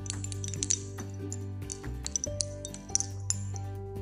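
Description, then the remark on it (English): Beads on a purple, red and green dreamcatcher with yellow feathers and a black center bead tinkle and clink in a loose, irregular scatter of bright, brief taps, heard over a steady low droning hum with no talking. “It has a very nice tinkle, so let's hear that tinkle.”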